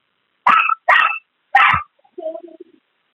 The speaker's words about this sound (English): That's not a dog. I'm listening to something right now. You need to go on mute. Yeah, whoever has the dog needs to mute.